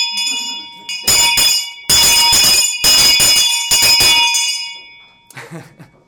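An old school hand bell is shaken vigorously in several loud bursts of clanging, its bright metallic ring lingering between strokes, ending with a softer, shorter jingle.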